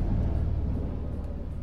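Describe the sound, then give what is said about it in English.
Two low-flying army helicopters and a Chinook pass overhead at the Essex-Suffolk border, England, producing a loud, steady, deep rumble with a faint pulsing chop that carries through the whole short stretch, with no voices. “We always get these two army helicopters and a Chinook fly over, and they're really low, really loud.”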